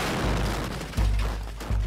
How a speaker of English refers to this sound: This was the moment a second explosion hit the Daya Hotel in central Mogadishu.